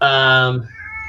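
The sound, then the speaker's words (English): A domestic pet cat, female, gives one loud, drawn-out meow at its owner, rich and steady before it abruptly trails off into a softer, thinner tail. “My little kitty is meowing at me.”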